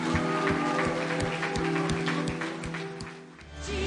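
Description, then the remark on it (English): A church audience at The Bridge Church claps along in a steady rhythm over sustained music, the applause lively, easing off briefly near the end before swelling again. “Can we just offer either some shouts or some applause of celebrating people that just said, I want to make it right with Christ?”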